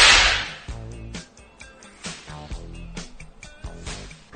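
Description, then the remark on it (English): A loud, sharp whip crack with a hissing, echoing tail opens, then gives way to rhythmic music with steady percussive hits and sustained tones. “This is Whip Talk. We're talking about whips.”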